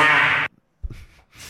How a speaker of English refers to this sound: Well, me pull out the fart sounds again.